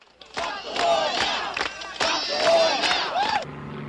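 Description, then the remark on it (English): A large protest crowd chants and shouts together, loud and dense, with rhythmic bursts of raised voices rising into cheers before cutting off abruptly near the end. “I do want to play a little bit from this very first episode of All Things Considered from the May Day protests in D.C.”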